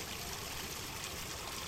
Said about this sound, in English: You notice, by the way, the water comes out of the pool, it keeps going back toward, like, it's like it's going back towards the lake, yeah. You can see it here, we'll give you a little sound of the water in the background.